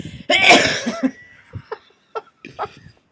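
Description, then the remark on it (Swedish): A loud, harsh cough bursts out during a microphone test, followed by several quieter, short throaty coughs or hacks spaced irregularly over the next couple of seconds. “Då var du bara hosta. Och var hosta.”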